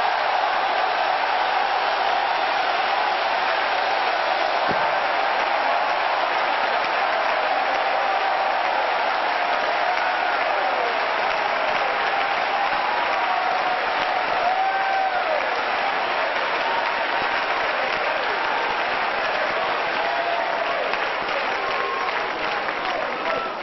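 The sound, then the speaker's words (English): An audience claps and shouts with a voice of triumph unto the Lord, a sustained, loud wash of applause and cheering voices that holds steady for over twenty seconds without a break. “Would you clap again and shout with your voice of triumph unto the Lord?”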